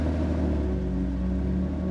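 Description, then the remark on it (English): A car engine rumbles low and steady, a continuous droning hum with no voices, holding an even loudness throughout, as two men race off in the car into the night. “The two assassins raced off into the night.”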